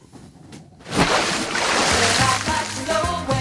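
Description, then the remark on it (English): A brief musical segment theme about a lifeboat over splashing, sloshing water: a near-silent start, then a loud rush of water from about one second in, with short tonal notes coming through beneath it. “Let's play the lifeboat theme.”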